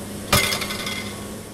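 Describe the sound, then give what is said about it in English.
A sharp metallic clank as the loadmaster launches a data-gathering tube from a hurricane aircraft while it exits through the opposite eye wall, one sudden hit followed by a brief ringing decay over a steady background hum. “As the plane exits through the opposite eye wall, the loadmaster launches one of the tubes for gathering data.”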